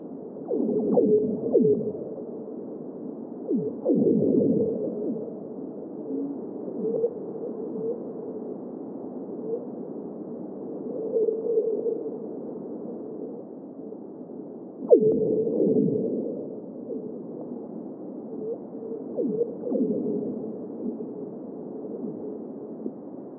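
Singing ice on a frozen lake: a steady, eerie low hum broken by a few sharp, swooping pings and whale-like moans at irregular intervals, with no voices.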